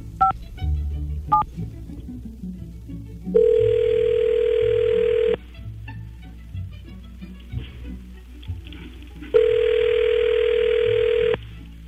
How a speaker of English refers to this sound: We've already pulled the name. Now we just have the phone number. We'll dial here. I'll be quiet so I don't mess you up.